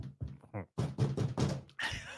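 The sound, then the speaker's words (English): A voice imitates knocking on a door with a quick series of about half a dozen punchy, rhythmic vocal knocks, fairly loud, ending in a brief breathy sound. “So I show up at your door.”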